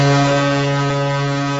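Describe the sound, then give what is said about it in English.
A tugboat horn blasts one long, steady, low-pitched note, loud and rich in buzzing overtones, holding evenly without a break for under two seconds, with no voices. “Right now we have the tugboat.”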